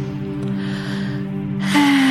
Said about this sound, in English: And one more beautiful deep breath in to just get rid of that last bit of tension, breathing in.